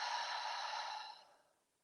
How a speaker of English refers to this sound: And we're going to take that first deep breath in, breathing in through the nose and out through the mouth.